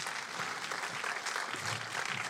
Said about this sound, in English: If you guys will, give him a round of applause.